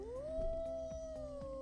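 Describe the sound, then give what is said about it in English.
A person imitates a wolf howl: one sustained, rising then steady wavering tone lasting over a second, moderately loud, ending in a sudden brief noisy burst. “I'm a little howl at the moon well, for Halloween.”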